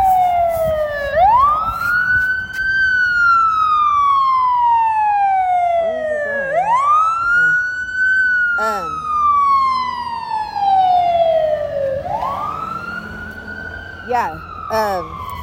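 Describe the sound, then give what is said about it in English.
An ambulance siren wails loudly, rising sharply then sliding slowly down in long repeating cycles, about three sweeps, with faint voices and traffic noise underneath. “Ambulance.”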